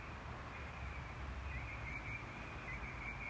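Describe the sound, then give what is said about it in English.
Faint, high bird chirps in the early morning, around 5:30, flicker over a steady outdoor hiss, with a few short warbling calls in the latter half. No one speaks. “I'm outside right now because right now is when I'm done making the coffee, and right now happens to be when the bird sound has been the best this morning.”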